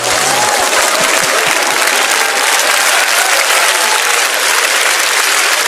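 Loud, sustained applause from a large audience, a dense wash of clapping that holds steady for several seconds without any voices breaking through.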